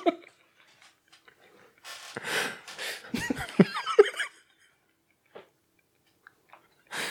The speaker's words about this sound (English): We're eating candy corn